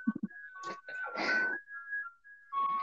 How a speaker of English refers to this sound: And sorry, there's an ice cream truck passing by.